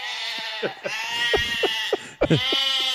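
A goat bleats loudly, a long quavering call with a shaky, vibrating tone that breaks into several stuttering pulses before a short pause and another wavering bleat.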